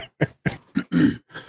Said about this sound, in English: I apologize for coughing ahead of time.